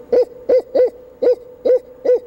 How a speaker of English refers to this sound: The barred owl says, "Who cooks for you?" Or in the South, it says, "Who cooks for y'all?" It goes.